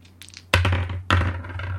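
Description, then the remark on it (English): First-date dice are rolled, with two sharp clattering bursts about half a second apart as they tumble and rattle across a hard surface, over a low steady hum. “First date dice. Ready?”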